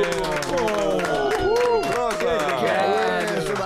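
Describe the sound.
An audience claps and cheers together, a steady, loud wash of hand claps mixed with many overlapping shouting voices that carries on evenly for about four seconds.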